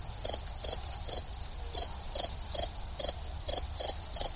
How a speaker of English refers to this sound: And Rabs mentioned to me that he actually uses an app that has the sound of crickets.